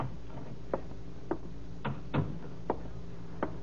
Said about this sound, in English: That was why he left his drafting table this Thursday afternoon, adjusted his tie nervously, took one last long puff at his cigarette, inhaled the smoke, let it out in a deep sigh, and knocked on the door to Mr. Collins' office.